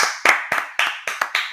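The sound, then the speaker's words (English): Hand claps in praise of a football team's defense, about eight sharp smacks in a quick steady rhythm, bright and fairly loud, with no talking over them. “Let's clap it up for our defense, man.”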